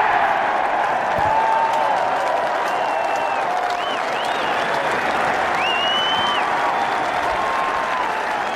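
A large crowd roars and applauds after Jack Nicklaus holes the final putt of his Open career, a dense, steady wall of clapping and cheering that stays loud for the whole stretch, with a few shrill whistles cutting through.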